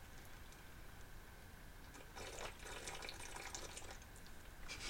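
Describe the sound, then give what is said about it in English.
Wet slurping of a thick raspberry milkshake through a straw, a steady gurgling suck that starts faintly and grows louder and bubblier partway through, with no talking. “Nice slurping.”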